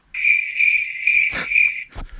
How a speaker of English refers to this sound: No, I do. I just wanted to give myself crickets.